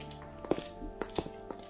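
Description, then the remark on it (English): A handful of hard footsteps tap at an unhurried, slightly uneven pace over a steady low hum as two people walk through an abbey into its residence wing, each step short and moderately loud, with no one speaking. “The two of you walk through the abbey into the residence wing.”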